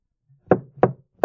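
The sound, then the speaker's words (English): Three firm knocks on a wooden podium, evenly spaced about a third of a second apart, solid with a hollow thud, with no talking. “Did I knock on a podium or am I a podium knocker?”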